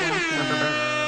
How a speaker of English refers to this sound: Air horn sound.